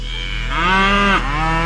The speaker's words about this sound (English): Now, here's the moo.